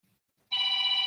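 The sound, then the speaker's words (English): A telephone bell starts ringing abruptly after a brief near-silence, a loud, steady, sustained electronic trill with bright harmonic tones that continues to the end. “you're going to want to stay tuned once that phone stops ringing.”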